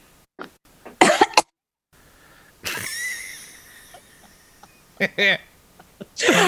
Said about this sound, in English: Just a bunch of coughing. Yes. Well, that's the smoke effect.